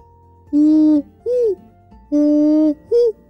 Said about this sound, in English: Off in the distance, she could hear the sound of the great horned owl, and that made her fly even faster.